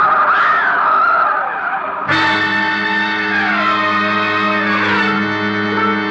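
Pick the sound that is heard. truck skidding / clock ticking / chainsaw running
truck skidding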